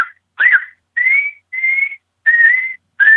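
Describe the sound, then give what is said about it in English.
A diaphragm call imitates coyote estrus chirps: about six high, whiny, whistle-like notes in a steady series, each slightly wavering in pitch, fairly loud with no talking. “Call those estrus chirps and estrus whimpers, and this time of year is magic.”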